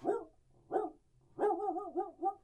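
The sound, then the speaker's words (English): A person imitates a dog barking: two short, gruff barks followed by a longer, wavering run of yelping barks, fairly loud with no other talk. “I think my bark's better than your bark.”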